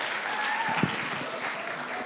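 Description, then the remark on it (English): A crowd claps steadily, a dense wash of many hands with no pauses, fairly loud and even throughout, with a faint voice briefly audible underneath. “Let's give it up for”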